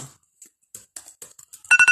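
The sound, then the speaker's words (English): An electronic alarm starts beeping, three loud, high pulses in quick succession, following a few scattered clicks and rustles. “Excuse me with my alarm.”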